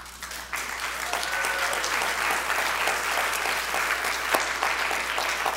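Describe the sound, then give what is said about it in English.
A large church audience bursts into sustained applause, dense steady clapping that starts abruptly and continues at full strength throughout, with no talking over it. “Can we start a clapping? Could we be a clapping church?”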